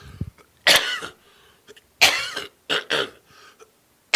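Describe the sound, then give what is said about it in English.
A person coughs several times, loud harsh bursts spaced irregularly across a few seconds, with short quiet gaps in between and no talking. “Can you pause a second? I just have to cough.”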